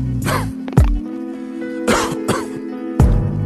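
A series of about five harsh, hacking coughs in irregular bursts, close and fairly loud, over a steady low hum with no talking.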